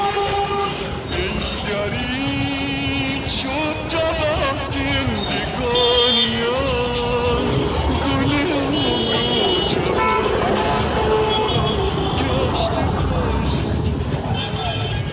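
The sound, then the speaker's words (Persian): Dense urban traffic noise fills the scene, with a steady engine rumble and repeated car horns tooting in short bursts, and indistinct voices mixed into the busy street din. “اینها آوای شهریه که دیگه هیچ صدایی از گذشتش شنیده نمیشه.”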